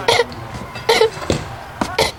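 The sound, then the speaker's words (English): Four or five harsh, raspy coughs in an irregular burst, close and fairly loud, with short gaps between them and no talking. “I think I'm getting the black lung”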